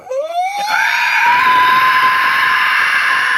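A single sustained, strained scream drawn in on an inhaled breath, rising in pitch at the start and then holding a harsh, buzzy tone for a few seconds, loud.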